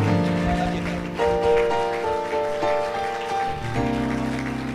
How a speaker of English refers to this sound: We give you a hand clapping to the Lord right now. Give him some praise